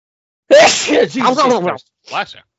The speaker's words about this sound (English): I'm about to sneeze. Hang on.